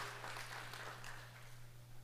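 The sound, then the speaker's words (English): A crowd applauds steadily for a couple of seconds for the people aged 50 to 60 among them, a dense, continuous patter of many hands with a low electrical hum running underneath. “Let's applaud these ones.”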